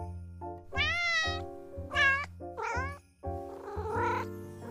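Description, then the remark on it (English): A cat named Darcy meows, about four drawn-out, wavering meows in quick succession, some rising and falling in pitch, over a soft steady tonal hum in the background. “And my cat Darcy actually also wanted to say something.”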